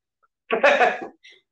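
A single close, harsh cough bursts out for about half a second, followed by a brief faint breathy catch. No one speaks.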